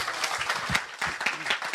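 An audience breaks into a sustained round of applause, dense overlapping claps forming a steady, bright wash of noise that stays loud throughout.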